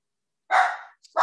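A dog lets out two short, huffy barks separated by a brief pause, with quiet all around and no one talking.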